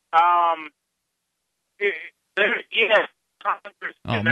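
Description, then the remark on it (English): A voice comes through a badly degraded phone line, choppy and garbled, breaking into short bursts separated by dropouts of silence, with crackly distortion near the end. “Tell you what, we've got a really bad phone connection here with you.”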